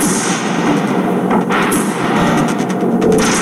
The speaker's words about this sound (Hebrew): זה נגיד הגארדן צ'ר, הכיסאות עם מקל, יש רשת על הרשת.